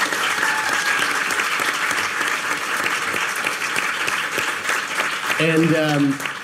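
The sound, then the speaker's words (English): An audience claps steadily in a dense, continuous wash of applause lasting several seconds, with a few cheers rising out of it near the end. “So I want to just give you a huge round of applause for showing up tonight.”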